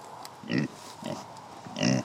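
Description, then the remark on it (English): A pig on a small farm in central Illinois, USA, grunts three times in short, throaty bursts spaced about half a second apart, fairly loud, with only faint background noise between them and no talking. “He's 69 and lives in central Illinois, where he's got 92 acres of soybeans and timber and raises a few cows and pigs. Come here, pig.”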